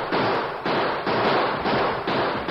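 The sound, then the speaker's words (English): Gunshots fired from a cluster of boulders at a charging band of Cheyennes, in a steady run of about five loud, sharp blasts, roughly two per second, with harsh crackling noise filling the gaps between them. No one speaks. “Keep firing, Tonto.”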